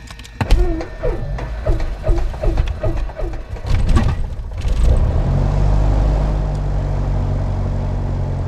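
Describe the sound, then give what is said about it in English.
A Piper Archer II aircraft engine at Great Barrington Airport in Great Barrington, Massachusetts, on a slightly cold day, cranks with a rapid, rhythmic chugging from the starter, then catches around the fifth second and settles into a loud, steady propeller drone. “Okay, now we're going to start the engine.”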